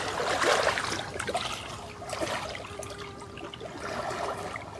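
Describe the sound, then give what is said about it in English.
A gentle stream trickles and burbles steadily, with soft splashes and bubbling rising and falling across the whole stretch, no voices present. “Feel the water calling to us, asking for us to relax.”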